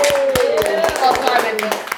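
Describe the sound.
A short round of applause: sharp, irregular claps from a few people, mixed with voices cheering and calling out over them, steady and fairly loud throughout.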